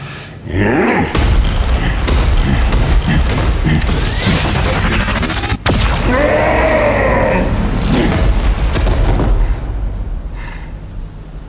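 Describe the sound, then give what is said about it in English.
A coma cannon fired at the Hulk roars in a loud sci-fi blast for several seconds with deep booming rumbles and warbling, mechanical tones, briefly cutting out midway before surging again and fading at the end. “The coma cannon would appear to be highly effective.”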